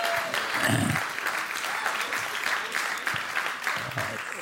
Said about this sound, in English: Bring them on in. Bring all the chairs in. Wow. Let's all just applaud the people that are going to walk in here.